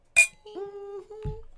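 A single sharp clink of glasses touching in a toast, followed by a sustained, steady ringing tone and a soft low thump near the end.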